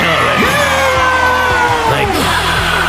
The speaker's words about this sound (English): Crowd goes wild.